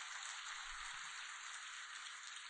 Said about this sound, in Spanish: ¿Podemos darle un aplauso a nuestro Dios por eso?